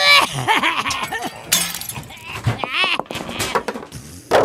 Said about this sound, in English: Stop! Stop smashing all my things.